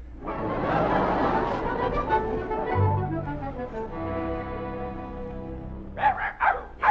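Playful vocalizations from two dogs playing together, one named Buttons, a mix of whining yips and short barks, fairly loud, with a few sharp bursts near the end and no speech.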